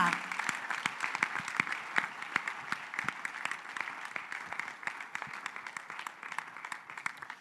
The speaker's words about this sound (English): If you say, clap your hands for Jesus. Thank you.